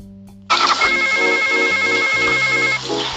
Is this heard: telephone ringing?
yes